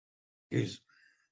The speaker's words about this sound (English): Excuse me. Still have a nagging cough, folks.